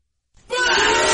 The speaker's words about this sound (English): Oh, okay, the crowd really upset about that.